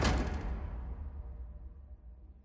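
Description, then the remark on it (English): A heavy wooden door slams shut once with a loud thud, followed by a low, booming rumble that slowly fades out. No voices are heard. “Katarina grabs his collar and drags him in anyway, slamming the door behind him.”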